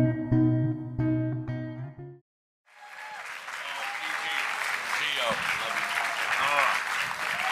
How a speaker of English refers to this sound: Amen. Amen. Just sit down. But keep clapping. I just love it. Fills my heart.